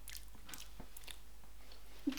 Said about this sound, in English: You're not. I heard you eating earlier. You're fine. Okay. Well, I could hear you eating, but it wasn't like a bad hearing you eating. It wasn't like...